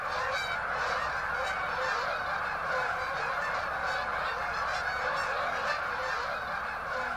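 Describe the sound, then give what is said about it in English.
A huge flock of thousands of geese honking all at once, a dense, continuous wall of overlapping calls that stays loud and steady throughout, with no voices. “It certainly gets very noisy, and the numbers of the geese in prime time in about mid-October just gets overwhelming.”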